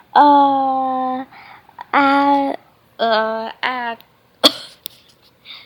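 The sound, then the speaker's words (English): Several strained, droning vocal sounds come in short bursts as a person with a dry mouth tries to speak, followed by a sharp cough near the end and a few softer breathy noises. No clear words are spoken. “Oh man, I just coughed in front of her.”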